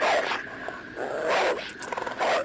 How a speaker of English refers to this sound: Snarling, growling. Growling dog, yes. Yeah, a very upset, angry dog. Probably times about 10.